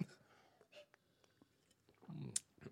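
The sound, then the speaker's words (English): Someone sips soda during a water break in a quiet pause, with soft breathy slurping and mouth noises, a short gulp, and a brief sharp click near the end. “going to take a pause to sip his soda.”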